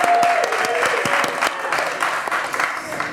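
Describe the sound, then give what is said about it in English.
A room full of people clapping steadily for a few seconds for a six-year-old first-grade boy's first interview, dense overlapping handclaps that stay loud throughout and taper only slightly toward the end. “So let's give him a round of applause.”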